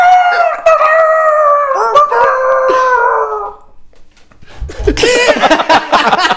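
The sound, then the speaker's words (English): A person imitates a chicken, starting with a long, wavering, drawn-out cry, then a short pause and a burst of loud, squawking, clucking noises, alone. “Sorry about the chicken impression.”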